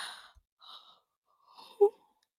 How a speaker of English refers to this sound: I'm so sorry, I can't stop yawning apparently.